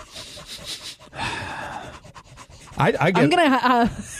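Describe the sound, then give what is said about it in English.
Breathy, airy inhalations as someone takes a big whiff of a freshly poured dark beer with a slight tan head: a short burst and then a longer drawn-in sniff, followed by a rising and falling voiced murmur. “Now let's move on to the smell. Let's take a big whiff.”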